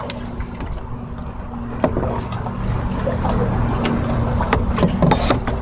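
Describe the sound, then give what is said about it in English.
A small boat drifting on water, with a steady low hum, soft lapping and trickling, and scattered light knocks and splashes throughout; nobody speaks. “I'm not letting go of this fucking boat.”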